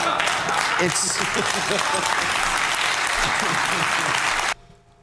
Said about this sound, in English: By the way, I think that applause is for me.